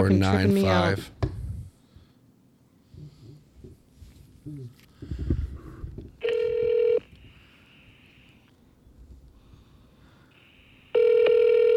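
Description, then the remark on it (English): A phone's ringback tone sounds twice through a speakerphone during a call to the Lagunitas Brewing Company, each buzzing ring under a second long and separated by a pause, with people talking quietly between the rings. “We're going to call him on speaker.”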